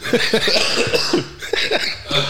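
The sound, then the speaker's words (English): A loud coughing fit: a rapid string of harsh, hacking coughs with voiced, laugh-like edges, coming in uneven bursts for a couple of seconds. “I hate that I can't laugh because it's just all coughs.”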